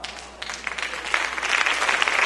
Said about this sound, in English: Listen, thank you for the clapping.